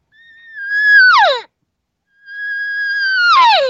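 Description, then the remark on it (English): Two drawn-out, nasal cow elk regathering calls made with a call, the come-back call of a cow that has become separated, each holding a steady high whine before breaking and sliding downward into a raspy finish. There is a short silence between them, and no talking. “So now when you're practicing that sound, which is a kind of a regathering sound or come back over this way, you're getting too far.”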